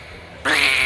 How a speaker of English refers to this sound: Like, what? What was that, Mr. Goose?